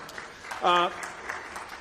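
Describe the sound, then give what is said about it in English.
A church audience applauds steadily for a guest, the clapping blending into a soft wash, with one brief voiced cheer rising above it partway through. “Absolutely, you can applaud for him.”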